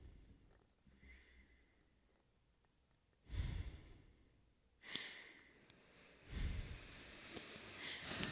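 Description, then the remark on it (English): Loud heavy breathing right against the microphone: three or four long, rasping breaths with quiet pauses between them, the last one trailing into a rougher, sustained exhale. “That's enough heavy breathing.”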